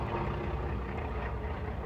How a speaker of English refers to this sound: Those are airplanes going over. Sorry, guys. Wow, they're loud. They're doing flybys. Sorry. We got the T-28s in town at the local airport here, so they're doing flybys and stuff.